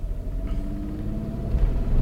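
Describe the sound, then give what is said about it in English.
A steady, deep engine rumble from an old pickup truck on the move, heard from inside the cab, with low droning tones that swell slightly louder toward the end. “this thing is great because it just, it's got that old truck vibe”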